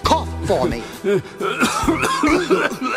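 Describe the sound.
A sick monster coughs in a series of rough, growling, voiced hacks, loud, repeating in quick bursts for a few seconds with gravelly throat-clearing sounds between them.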